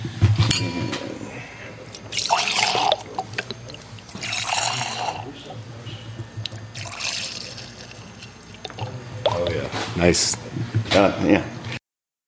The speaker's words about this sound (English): We have some Brennan Vineyards Tempranillo Fall 2013 Reserve right now that we're actually enjoying right now during the podcast. So, oh, doesn't that sound good? All right, so we're going to go ahead. Where's your glass? Pour some in here.